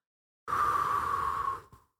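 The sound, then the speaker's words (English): A single slow exhale, a steady airy hiss with a faint whistling tone lasting just over a second before trailing off into a soft final puff. No talking. “And it might sound kind of weird, okay, but I want you to try it right now and feel the difference of when you're just breathing out like this.”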